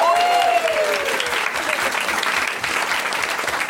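A crowd applauds a guest steadily for nearly four seconds, a dense, loud patter of many hands clapping at once, with a faint whistle-like tone briefly rising above it at the start.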